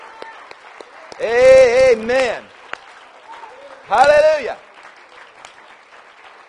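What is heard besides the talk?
audience applause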